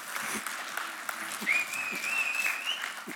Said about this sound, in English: Good job, team. Can we give the technical team a round of applause?